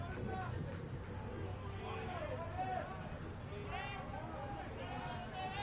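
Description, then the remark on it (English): A steady murmur of overlapping voices from a small crowd at a baseball game, with no single speaker standing out, holding an even, moderate level throughout the few seconds of background chatter. “Not a big crowd here today”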